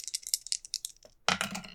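Dice rattle in a quick, irregular series of small clicks, then clatter and tumble across a table in a brief, fuller burst. Fairly quiet, with no talking.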